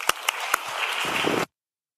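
A crowd bursts into applause, a dense wash of many hands clapping with a few sharp louder claps standing out, sustained for about a second and a half before stopping abruptly.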